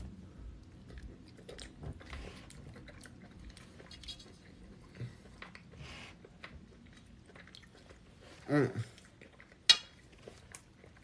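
Soft, steady chewing and wet mouth sounds of someone eating plant-based pasta run throughout, with occasional light clinks of a fork against a plate and a louder clatter of cutlery near the end.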